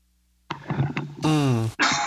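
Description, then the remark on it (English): A person clears their throat and stifles a cough: a few rough, gravelly bursts, then a strained, voiced rasp and a final harsh exhale, all fairly loud with no speech. “I just had something caught in my throat. You know, when you don't want to cough, but you have to.”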